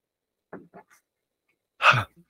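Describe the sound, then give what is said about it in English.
A few soft, short vocal noises, then a loud burst where a burp and a yawn overlap into one rough exhalation, followed by a faint trailing sound. “Just as a recap, sorry, I burped and you yawned at the same time.”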